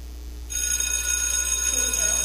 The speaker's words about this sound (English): The school bell. Okay, this is a sound many of us are familiar with. That means school is out or the class is done or you better get to your next class.